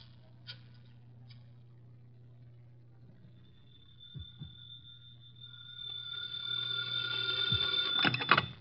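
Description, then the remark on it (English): A telephone rings, its high electric tone starting faintly and swelling steadily louder until it trills sharply at the end, over a low steady hum with no talking. “I got to make a phone call. There's a booth.”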